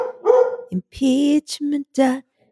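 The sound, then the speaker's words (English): A dog barks, five or six loud, throaty barks in a quick uneven series with short gaps between them, then silence. No one speaks. “And Maureen's dog will.”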